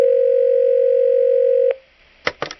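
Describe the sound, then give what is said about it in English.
A steady telephone dial tone hums loudly for under two seconds, cuts off, then a few quick electronic beeps follow as if a number is being dialed, for a prank phone call in a mock morning radio show skit. “Tune in to see who gets busted with Colin's crazy prank phone calls!”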